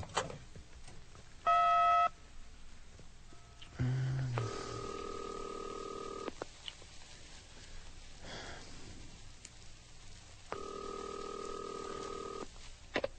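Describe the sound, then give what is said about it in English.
A telephone being dialed: a brief electronic tone burst, then two longer steady phone tones spaced several seconds apart, clear over a faint hiss, with no talking. “Well, maybe you better go through the operator.”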